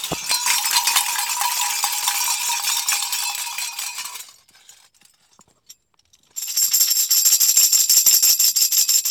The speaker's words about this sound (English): bells are ringing, my soul is singing.